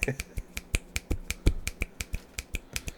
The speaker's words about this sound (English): Hold on, let me snap my fingers for you.